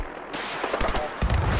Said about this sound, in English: I'm shooting this this hound in the butt.